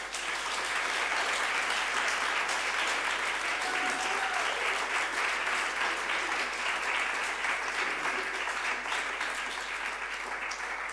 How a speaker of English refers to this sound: And could we just give a round of applause to all our participants?